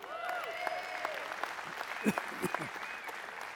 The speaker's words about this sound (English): I knew you would applaud. I'm assuming it's mostly for her, and I get it. But here's what's interesting. I don't know why you applauded